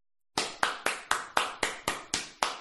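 A slow, polite golf clap: about nine light hand claps in a steady, even rhythm, fairly soft, with no voices.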